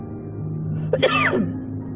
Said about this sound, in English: I'm just clearing my throat, y'all. Nothing's wrong.